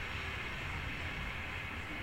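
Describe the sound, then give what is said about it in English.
A steady, broad roar of an airplane flying overhead in a video game, a continuous rushing drone with a low rumble underneath, holding an even loudness throughout with no voices. “Oh, it's the airplane.”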